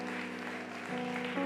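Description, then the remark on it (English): A church audience claps their hands in praise in a steady, dense wash of applause over sustained organ chords that step up in pitch twice, with no one speaking. “Somebody clap your hands like you really love Jesus.”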